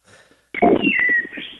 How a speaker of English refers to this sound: Yeah, that's definitely a bird.